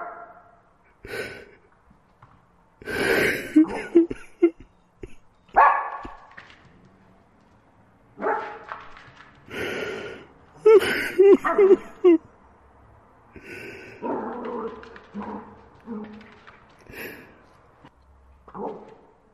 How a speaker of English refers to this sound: Sounds happy. Younger than he sounded in years. Who's a happy puppy?